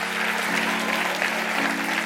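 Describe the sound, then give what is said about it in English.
A crowd claps steadily and loudly, a dense wash of many hands applauding at once, with a low sustained tone humming underneath throughout. “Clap your hands real big all over the house.”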